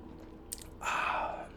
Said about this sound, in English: Little sip of beer.